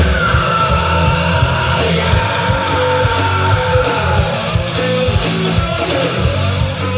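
A raw, sustained scream at the beginning of a rock song rides over loud, dense music with distorted guitars and pounding drums, the whole stretch full and continuous with no pauses.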